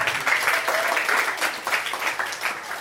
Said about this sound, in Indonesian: Tepuk tangan